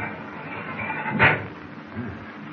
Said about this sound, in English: I'll try this steel door, see what it needs.